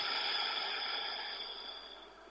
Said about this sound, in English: Big belly breaths, breathing in. And exhale through your nose.